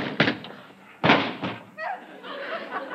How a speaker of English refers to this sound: I didn't hit him, he ran into the door.